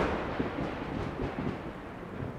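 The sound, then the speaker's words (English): Heavy thunder rolls and rumbles continuously as a giant bolt of lightning strikes a staff hurled into the ground, a dense low roar that stays loud throughout without a clear single crack. No voices are heard. “Soon after, a giant bolt of lightning strikes the staff and overcharges it”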